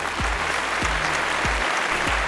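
A round of applause from a crowd, dense and steady throughout, with a regular deep thumping beat pulsing underneath about every two-thirds of a second.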